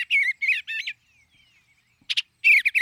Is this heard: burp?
no